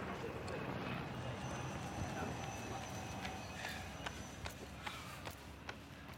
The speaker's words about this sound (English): Did you hear that? That was a bloke running past on London Bridge. Bloke running. And he ran.